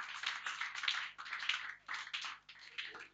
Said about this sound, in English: Somebody give the Lord a clap of it.